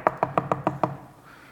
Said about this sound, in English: She hears knocking all the time.